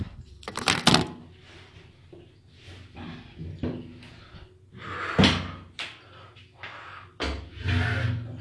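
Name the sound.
door being opened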